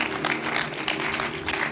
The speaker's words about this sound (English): Clap your hands.